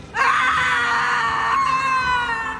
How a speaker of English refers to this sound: My mouth unhinges and the wind rushes from me, a gale force of hollow despair. I shriek.